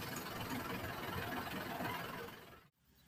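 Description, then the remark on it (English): A heavy rubbish truck engine rumbles steadily as it drives past, with a broad, grinding low-to-mid roar, holding loud for a few seconds before cutting off abruptly, leaving a quieter background hum. “Unplanned interjection of the rubbish truck.”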